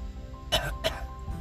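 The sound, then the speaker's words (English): Two short, breathy cough bursts in quick succession, fairly loud, as if someone is putting on a cough on being told to turn the head and cough, with quiet background noise before and after. “You're like, oh, okay, it's just turn your head and cough.”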